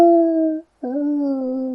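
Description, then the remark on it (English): Wolves howl in long, steady, tonal wails, one drawn-out howl, a brief pause, then another, loud with no talking. “Now, to see if the bit with the bloodthirsty elves and the ravenous wolves is true.”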